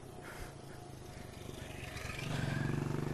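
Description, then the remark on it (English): A motorbike engine drones steadily and grows louder toward the end, as if passing by, with a buzzing, throaty rumble over background noise. “Now, oh, here's Mr. Motorbike Bicyclist.”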